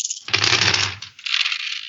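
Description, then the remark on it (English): Dice clatter and rattle across a hard surface in two bursts during a dice game, the first fuller and heavier and the second a lighter, higher skittering that trails off; the roll shows two fives. No voices. “Yep, that's nothing right there is what I rolled. Two fives.”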